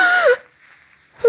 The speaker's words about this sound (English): Then, as the clock strikes three, a figure in white slips into Mary's room and stands beside the bed. Slowly, Mary opens her eyes and stifles a scream.